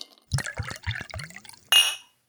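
Whiskey glasses clink together once in a toast, a bright ringing chime that follows a few short, low sounds and fades quickly.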